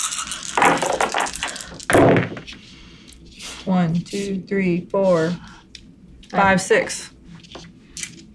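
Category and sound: dice being rolled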